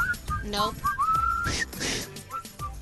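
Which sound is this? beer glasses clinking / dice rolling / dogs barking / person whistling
person whistling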